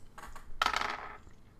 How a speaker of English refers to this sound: Wow, I'm glad I rolled larceny because I rolled 6 on the dice, so I'll change it to a 7.